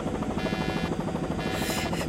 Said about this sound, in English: Well, we've got a working helicopter now. You can still be in Geneva in a few hours.